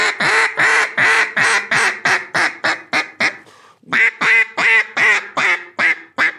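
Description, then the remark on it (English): A duck call sounds a long, rapid run of loud, raspy quacks imitating a hen mallard, about ten in a row, a brief pause, then eight more, with no talking. “I just think that knowing what to practice, you know, a hen mallard does go, mah, mah, mah, mah, mah, mah.”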